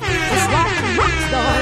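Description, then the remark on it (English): A loud, sustained air horn blast fills the whole moment, a brassy, harmonic-rich blare with a slightly wavering pitch, overpowering. “You get an air horn.”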